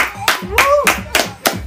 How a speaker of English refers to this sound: So clap it up.